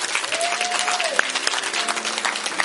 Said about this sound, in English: Let's give the Lord a hand clap offering.